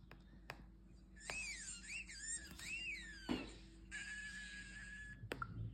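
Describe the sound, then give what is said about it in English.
A parakeet chirp sound effect from a game app, triggered by tapping a bird, plays twice in quick succession, bright warbling whistles followed by a harsher burst and a sustained shrill note, fairly loud with no talking. “It just, that was double parakeet for you.”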